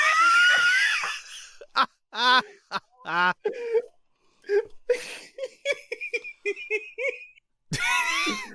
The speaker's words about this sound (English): Oh my god, I sneezed and coughed at the same time.